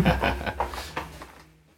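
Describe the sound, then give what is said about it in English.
A door being closed: a quick series of soft wooden bumps and rattles, ending in a final latch-like click before everything falls quiet. “and pardon me, let me go, actually let me close the door, we talk loud.”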